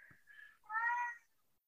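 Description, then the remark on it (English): A cat gives a soft chirp followed by one drawn-out, rising-then-falling meow, fairly quiet, with no one talking over it. “Yeah, you psychic kitty.”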